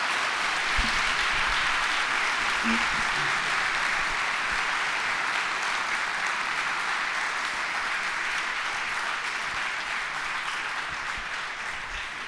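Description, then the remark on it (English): An audience in a new church building applauds presenters coming up to the front. The dense clapping is sustained and fairly loud for the whole stretch, easing off only slightly toward the end, with no one speaking over it. “Let's give them a round of applause as they come up.”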